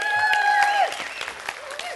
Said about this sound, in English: I saw you clap there.